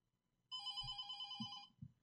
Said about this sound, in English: Boy, they just heard a phone ring because someone doesn't know how to operate a phone.